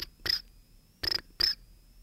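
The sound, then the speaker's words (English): A phone ringtone imitating chirping crickets: three short, bright chirps in an uneven rhythm over a thin, steady high whine. It is fairly quiet, with no voices. “Yeah, I think when your phone rings like that, the actual tone is called crickets.”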